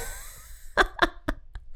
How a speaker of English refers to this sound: I think I told you guys before that my dog sleeps underneath my desk, and he is snoring quite loud today.